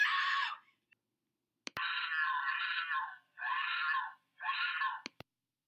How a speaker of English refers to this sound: So, and I also have to say that I too would scream if I thought I was about to get attacked by a lion of any sort, a mountain lion.